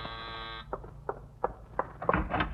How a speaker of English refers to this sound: I was just about to join Mrs. Davis in the yard when the doorbell rang.